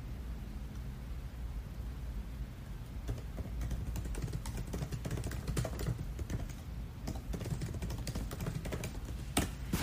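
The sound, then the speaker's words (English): Steady, fast clicking of keys on a computer keyboard as someone types notes, moderately loud, with irregular bursts of keystrokes over a constant low hum of background noise. “Sometimes I like to talk to you guys while I'm typing on notes on my computer for you.”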